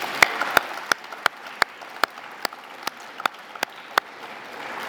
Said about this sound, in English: So, just nothing else but to say thank you so much to our five speakers, for two great presentations and for taking the questions. So could you join me in a round of applause, please?